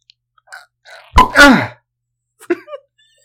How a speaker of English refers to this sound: Okay, well, on that note, I'm going to open this bottle and we can all escape together.